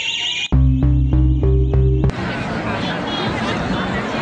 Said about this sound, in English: Pal, you just pulled the fire alarm.